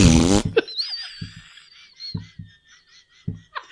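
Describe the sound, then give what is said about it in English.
At the start of a comedy set, a man holds a microphone to his butt and farts: a loud, buzzy fart blasts into the mic, then gives way to thin whistly tones and a few short, low sputtering bursts. “He just stuck the microphone to his butt and farted.”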